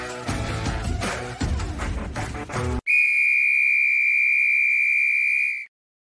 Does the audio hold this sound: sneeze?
no